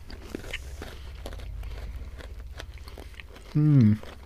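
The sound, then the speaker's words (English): Crunching as someone bites and chews a crisp biscuit with hundreds and thousands scattered through it, with a steady run of sharp cracks and crackles, followed by a short voiced hum near the end. “Again, quite crunchy.”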